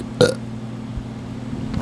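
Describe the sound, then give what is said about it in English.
A single short, loud burp bursts out, followed by a low steady hum and quiet room noise with no talking. “Let's make up the burp.”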